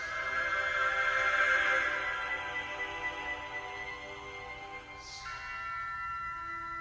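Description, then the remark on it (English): Rich, sustained tones of a modern church music piece swell and slowly fade, then a single bell strikes clearly near the end and rings on with a long, shimmering resonance. No one speaks. “And then you hear the bell at the end and see what the effect is.”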